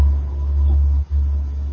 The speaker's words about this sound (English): Is that on your end? There was a truck that just went by my apartment. I'm sorry about that.